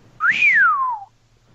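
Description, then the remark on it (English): A single whistle by a man rises quickly to a peak, then glides slowly downward for about a second, clear and fairly loud with no talking. “He's just giving a whistle.”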